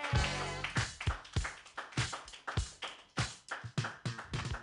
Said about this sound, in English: Everybody put your hands together